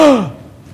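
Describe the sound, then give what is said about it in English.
A single sharp gasp-like vocal burst, loud, dropping quickly in pitch and fading into near silence within a split second; it sounds like a voice imitating a startled gasp. “Can you hear the gasp?”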